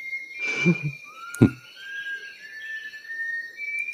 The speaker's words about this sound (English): Secondly, now it's not a mimicking species, but this bird is singing in a Western musical scale. And as a composer, this kind of freaked me out. There's a bit of Gershwin in there, right?